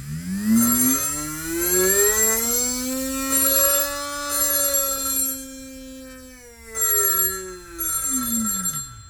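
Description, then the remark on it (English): A home telephone rings in a steady, warbling tone that rises and falls, repeating in several close bursts for about nine seconds, fairly loud and with no talking. “Oh, can you get that?”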